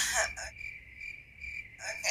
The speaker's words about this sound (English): Crickets.